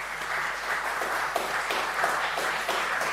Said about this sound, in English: Would you please give him a round of applause if they come up?